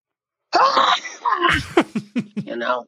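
Two sneezes over a voicemail line: a drawn-out, wavering vocal wind-up, then sharp, loud, breathy bursts, followed by several short choppy vocal sounds.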